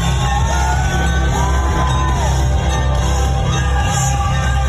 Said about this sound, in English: It's weird because they sort of pan to the audience. And, you know, there's a lot of noise going on. And you think that there's a large crowd, but I see like five people sitting and folding chairs.